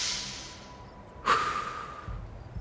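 Heavy, deliberate breathing, with a long airy exhale and then a sudden forceful intake of breath, followed by a softer trailing breath. No one speaks.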